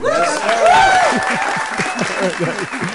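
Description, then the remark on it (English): A large crowd at a speech by Evers applauds steadily, with several whoops and hoots rising above the clapping; the dense, continuous applause is fairly loud. “I noticed a few of those hoots right off the bat.”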